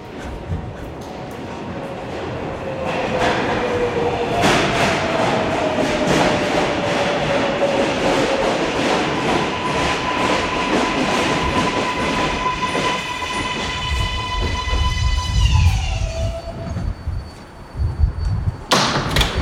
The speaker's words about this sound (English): There is a Manhattan bound local 7 train to 34th Street, Hudson Yards. Approaching the station, please stand away from the platform edge. All right, so my train's arriving.